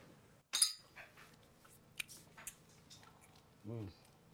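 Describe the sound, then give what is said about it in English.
A single bright, sharp clink of glasses of Deleon Tequila touching in a toast, followed by quiet room noise, faint handling sounds and a brief murmur of a voice near the end. “Cheers.”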